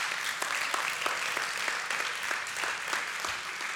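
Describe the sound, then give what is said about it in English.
A church audience at a Grace Church service claps steadily, a dense wash of many hands with faint sharper individual claps scattered through it, sustained at an even, moderate loudness with no voices on top. “Others are like, did we just dishonor God by clapping?”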